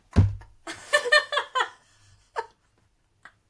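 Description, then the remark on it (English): A voice imitates a dog plopping down to sit outside at night: a low, heavy thump, then a run of breathy, laugh-like vocal bursts, followed by two brief, fainter sounds with pauses between. “Last night I took my dog outside and I just heard her plop down to sit.”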